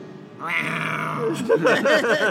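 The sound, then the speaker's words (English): A person imitates a yelling, pain-loving demon cat: a loud, drawn-out, strained yowl that breaks into rough, garbled snarling vocalizations. “And the demon cat yells,”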